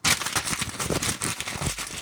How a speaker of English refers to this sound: I just ripped that fucking paper up.